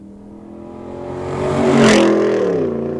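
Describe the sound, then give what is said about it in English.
A Silverado pickup truck with a Borla ATAK cat-back exhaust drives past, its deep engine note swelling as it nears and peaking in a loud, barky roar before easing off. No talking. “All right, we're going to give you one more sound clip, and this is going to be the Borla Attack system driving by.”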